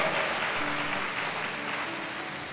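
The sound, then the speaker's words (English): An audience claps for Jesus during gospel preaching, dense overlapping applause sustained at an even level from start to finish, with no voices standing out. “Clap for Jesus.”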